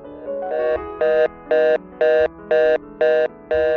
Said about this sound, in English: I'll finish it up, but we got a phone call. I can't give it short shrift. Let's see if this phone call works. This is the first one in the new studio.